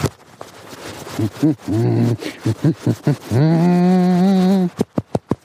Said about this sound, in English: Hug with a hum.